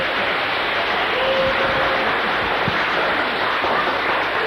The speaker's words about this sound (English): Give her a clap, come on.